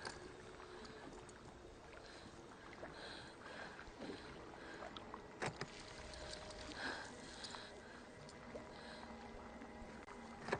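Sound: boat moving on water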